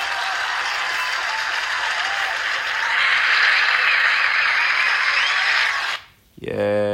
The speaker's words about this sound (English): Cue the applause. Show me the love. Show me the love.